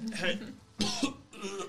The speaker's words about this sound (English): Protest quickly smothered by a bout of hacking and coughing.